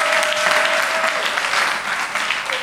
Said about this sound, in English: I don't like the way you are clapping. I will stop the service.